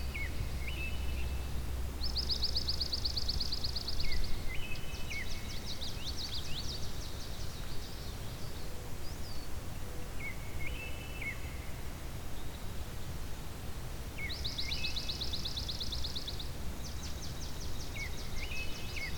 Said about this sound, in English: As you can tell, it can be both rapid and slightly less rapid. There's different speeds to the swamp sparrow.